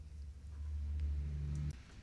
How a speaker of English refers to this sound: Plow guy just showed up, so we want to make sure that Donna Harris's car didn't get dinged